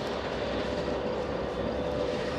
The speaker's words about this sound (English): Union Pacific train here, probably doubling up out of the Global 3 Intermodal, out of the Global 3 Intermodal terminal just down the line here.